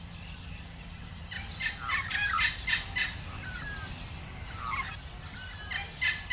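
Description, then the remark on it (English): Outdoor chorus of several birds waking up in the morning at the end of winter, calling and chirping over a low, steady background rumble, with bursts of squawky, gobbling calls clustering in the middle and shorter chirps later. “That's the sound of the birds waking up in the morning.”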